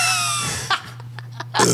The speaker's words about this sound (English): I need to burp really bad.